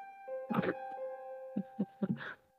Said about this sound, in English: And he focuses on the door. Check this shit out. And he stares at the door so very, very, very hard till you all hear a light toot.